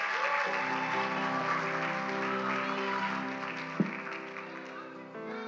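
A room full of people claps steadily for several seconds, a dense wash of applause layered over a sustained keyboard-like chord holding underneath.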